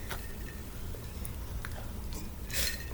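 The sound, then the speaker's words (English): Faint glasses clinking together in a toast, a few small bright ticks with a slightly louder chiming tap near the end, over a low background hum. “That was fucking fantastic. Cheers. Cheers.”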